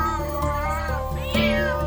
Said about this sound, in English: Oh, a lot of cats.